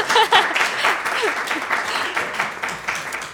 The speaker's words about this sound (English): A big round of applause.